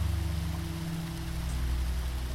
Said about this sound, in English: Just stand in the waterfall and allow the water to pass through you, submerge you, cover you, cleansing you as it goes. And when you think you have had enough cleansing, you're going to walk straight through the waterfall.